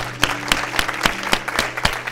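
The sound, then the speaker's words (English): An audience claps hands together in a steady, even rhythm, about eight sharp claps in two seconds, fairly loud and in unison over a low background hum. “So if anybody agrees with that, I need a hand clap.”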